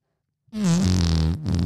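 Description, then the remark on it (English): A voice makes a loud, buzzy raspberry imitating a fart: one long sputtering blast that dips in pitch, a brief break, then a shorter second burst. “My friend, I don't want to say her name, but she was letting them rip. And I'm talking, it was like this.”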